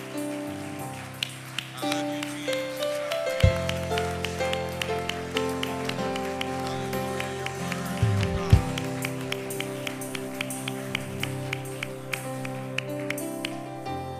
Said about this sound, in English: Let's clap our hands to the Lord together, everybody.